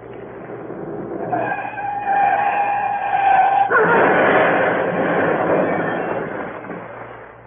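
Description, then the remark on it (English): A stolen large green Daimler speeds and screeches with a rising tire squeal, then skids off the road through a hedge in a loud, rough rush of skidding noise that lingers for several seconds, with no voices. “Reported in stolen car. Large green Daimler speeding south.”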